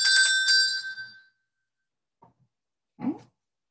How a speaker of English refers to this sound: Let's see what I have here. My handy dandy bell.